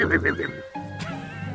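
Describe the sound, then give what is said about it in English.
A person's voice imitates a horse whinny: a quick, wavering series of high pulses that then slides into a sustained, nasal tone. It is fairly loud, with no other sounds. “I'm a crab horse!”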